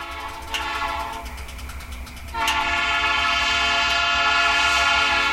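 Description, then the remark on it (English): A coal train winds its way through Colorado, rolling along the tracks with a deep, steady rumble while its horn blares in long, sustained chords, growing louder and fuller partway through. No voices are heard. “We leave you this week with the rhythm of a coal train winding its way through Colorado.”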